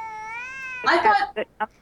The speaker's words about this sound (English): Honey, The cat's going crazy here. Listen to him.